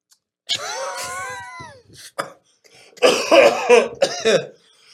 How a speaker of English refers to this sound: Oh my God. Why would you cough on the mic, dude?